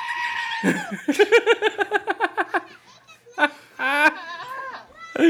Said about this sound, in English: That's it. Is that really a fucking goat? I think so.